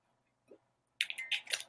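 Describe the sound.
After a near-silent pause, a voice imitates someone typing on a keyboard in an office cubicle with a rapid, uneven burst of crisp, hissy mouth clicks, fairly loud, lasting under a second.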